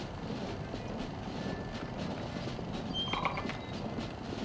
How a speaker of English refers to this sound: Okay, everyone, weather is against us here. Cue red coats. Okay, Malcolm, cue the horses.